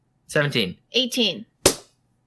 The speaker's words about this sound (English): Clap.